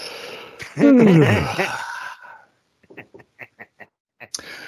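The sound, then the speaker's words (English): A loud, drawn-out human yawn with a groaning pitch that slides downward, followed after a short pause by a handful of quick, soft rhythmic bursts. “Go ahead, give the yawn”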